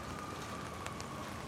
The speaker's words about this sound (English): What do you hear? Do you still hear rain in Manhattan? Or has your listening changed?